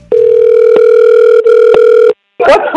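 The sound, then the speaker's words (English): A loud, steady telephone dial tone hums for about two seconds with a couple of faint clicks, cuts off abruptly, and then a man starts speaking. “Let's go to the phones.”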